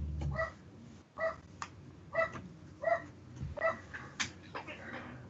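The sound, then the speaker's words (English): Animals bark in short, single calls separated by brief pauses, about six or seven in a row, moderately loud, with no talking. “They're barking one time and then stopping.”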